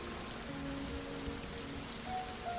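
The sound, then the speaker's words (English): Steady rain hisses without a break, a dense wash of falling water with faint tonal hums beneath it. There are no voices and no distinct drops stand out. “It's pouring rain.”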